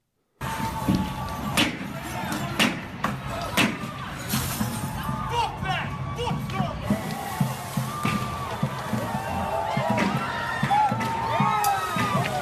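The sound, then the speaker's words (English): Repeated sharp impacts and bursts of breaking glass ring out as protesters smash the windows of a Starbucks, over a loud, dense crowd shouting and cheering, with chaotic voices overlapping throughout. “Okay, so there they are smashing a Starbucks.”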